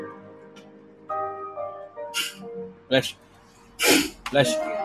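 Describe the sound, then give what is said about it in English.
A sharp, loud sneeze bursts out over steady tonal background sounds, preceded by a quicker explosive burst, with people talking around it. “Bless you.”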